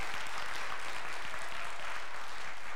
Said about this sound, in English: Yeah, give them a round of applause here.